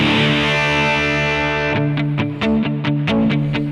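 Electric guitar with its overdrive cleaned up by the volume knob, set about halfway down with the gain at about 2 o'clock: a held, mildly gritty chord rings out, then gives way to a quick run of rhythmic strummed chords. No talking.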